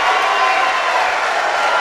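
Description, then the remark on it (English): A large crowd cheering and roaring at Donald Trump's announcement of his candidacy for President of the United States, in a steady, loud wash of noise, with no distinct voices standing out, sustained for a couple of seconds. “Is that all cheering or?”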